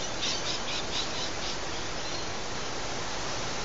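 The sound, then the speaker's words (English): Steady, rushing wind that is picking up fills the whole clip with a constant hiss, heard from a front step in Sydney, Australia, under some clouds, while a few faint, high bird chirps come through in the first second and a half. No one speaks. “I'm not sure if you can hear this wind and those birds, but it's picking up here.”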